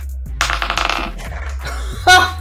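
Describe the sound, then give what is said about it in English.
Dice are rolled for initiative, clattering and tumbling across a hard table in a quick burst of small rattling clicks, followed by a brief sharper clack as they settle, fairly loud. “We are going to roll some initiative.”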